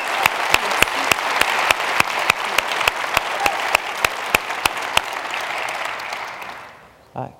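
An audience breaks into a round of applause, a steady wash of many hands clapping with sharp individual claps standing out, then it fades out near the end.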